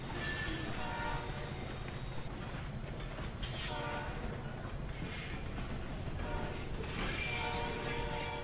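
A train rolls steadily along the rails with a continuous low rumble and metallic rattling, punctuated by brief tonal whistle-like squeals, loud throughout.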